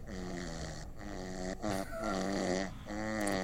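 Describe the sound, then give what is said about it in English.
A man snores loudly during the night, recorded on an iPhone voice recorder, with rough, buzzy breaths repeating in quick succession over a few seconds, each separated by a brief pause. “That's him snoring all night long.”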